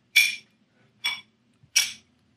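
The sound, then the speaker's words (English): Three bright, ringing clinks of glasses touching in a toast, each sharp strike fading quickly, spaced unevenly about a second apart with quiet between them. “Fucking and for that, God damn, I'm going to raise my glass.”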